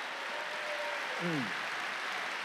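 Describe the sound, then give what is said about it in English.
An audience claps their hands to praise God in a steady, dense wash of applause, with a faint sustained tone and a brief downward-gliding voice-like sound partway through. “Clap your hands and praise God if you believe it.”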